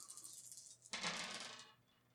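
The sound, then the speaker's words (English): A pool of five dice clatters onto a hard tabletop in a quick, bright burst of rattling that settles after under a second, with no voices. “It's always dice pool of 5. Threshold of 3.”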